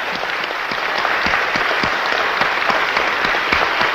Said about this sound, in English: Let's give Jesus a jolly good clap for what he's done for us. Praise the Lord.